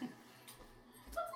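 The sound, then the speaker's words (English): A dog named Molly whimpers softly, a brief high, thin whine near the end after a faint snuffle at the start, with no talking. “Molly follows too. Molly, that means you. No. Dog Molly.”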